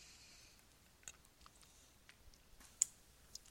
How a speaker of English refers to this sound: Let me take a sip here real quick.